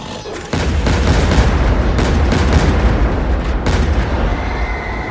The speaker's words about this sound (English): My brother wasn't wasting any time, and neither was I. Isaiah's shots went high, exploding through the creature's head and chest.